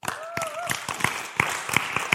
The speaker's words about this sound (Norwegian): Her kan jeg klippe litt, vet du, som jeg skal gi dem en applaus.